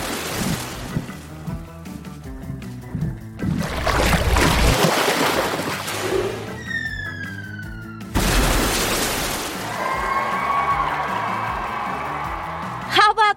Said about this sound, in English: I'm gonna dive down and do a big breach. That means I burst up from the water to the surface, and then I land with a huge splash. All right, here goes.